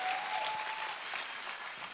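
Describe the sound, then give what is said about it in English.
A church audience claps their hands for news of people giving their lives to Jesus, in a dense, steady burst of applause, many overlapping claps forming a continuous bright crackle that stays loud throughout without anyone speaking. “Can we clap our hands and really clap?”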